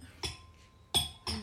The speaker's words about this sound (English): Sorry, just putting down my glass.